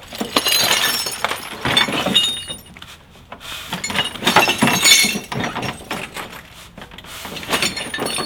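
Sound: glass being smashed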